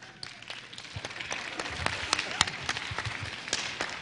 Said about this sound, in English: I'm glad that you're clapping. I'm glad that you're clapping.